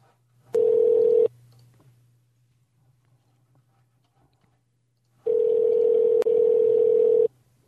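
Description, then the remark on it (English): A phone line rings on the other end: a short burst of steady tone, a long quiet pause over faint hum, then a longer ring of about two seconds. No one speaks. “Dan's ready on the phone. Let's give him a call.”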